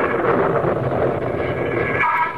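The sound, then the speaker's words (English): A tremendous thunderclap rolls out as a loud, dense, sustained rumble, holding steady for a couple of seconds before easing slightly at the end, with no voices. “Just then there was a tremendous thunderclap and the electric lights failed.”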